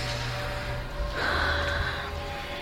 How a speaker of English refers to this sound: So start to deepen the breath in both directions. Deepening the inhales, deepening the exhales.